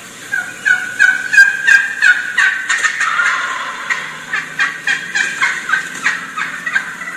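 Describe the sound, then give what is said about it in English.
A turkey hen yelps in a steady, rhythmic series, calling to bring an approaching gobbler closer, while the gobbler's rattling gobble rolls through the middle, all fairly loud with no voices. “You hear how she stopped as soon as another hen started calling?”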